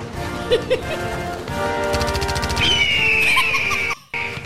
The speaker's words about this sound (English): USA national anthem with gunfire and bald eagle screech? That is so perfect.